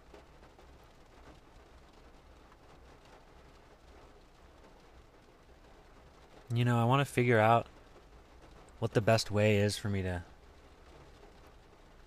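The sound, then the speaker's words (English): Steady rain hisses throughout, with a faint low rumble of distant thunder beneath it. Partway through, a person speaks a couple of short phrases over the rainfall. “capture this rain or use this rain in an artistic way.”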